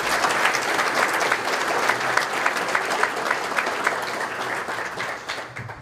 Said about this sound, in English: So I would like to say publicly a special thank you to the staff of the H Hotel for continuing to make this such a great event. If you'd please give them a round of applause.